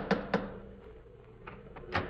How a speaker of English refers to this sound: Well, here we are once again, about to lift the knocker of Dr. Watson's familiar front door. Phew, it's covered with icicles.